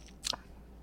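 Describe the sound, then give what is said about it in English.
A single quick sip, a brief slurp of beet juice drawn from a wine glass, standing out against an otherwise quiet background with no talking. “Okay, they're sipping it.”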